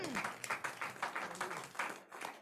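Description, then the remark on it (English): An audience claps for the Lord Jesus in a quick, steady rhythm, a run of sharp, even claps at a moderate level with no clear speech over them. “Clap for the Lord Jesus.”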